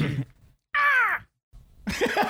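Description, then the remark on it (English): A person gives a single drawn-out, falling vocal hoot in imitation of an owl, fairly loud, with brief muffled voices and rustling before and after. “Classic owl noise.”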